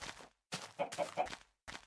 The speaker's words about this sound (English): No more sheep over here, just chickens.